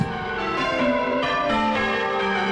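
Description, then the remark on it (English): Church bells pealing loudly and continuously at Chalfont St. Giles Parish Church outside London, rung by a band of eight each pulling a rope, for Ring for the King on King Charles III's coronation day, with overlapping strikes blending into a rich, ringing wash of tones and new strokes sounding every half second or so. “Ring for the King is a nationwide quest to have every bell in every church ringing for King Charles III on his coronation day.”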